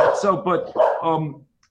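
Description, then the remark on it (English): A dog barks several times in quick succession, fairly loud, each bark a short tonal yelp running into the next before it falls silent. “Oh, there's our serial killing dog.”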